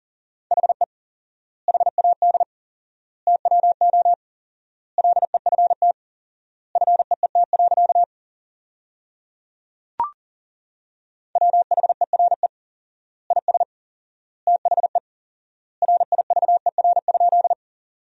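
Fast Morse code at 40 wpm with 4x word spacing, sending sentences built from the top 300 words: clusters of quick, steady mid-pitched beeps separated by long silent gaps, with one sharp click partway through and no voices.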